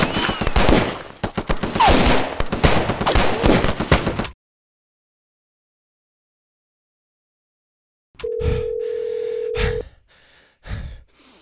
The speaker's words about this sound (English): There was a gunfight, and I'm off the Conowingo Bridge.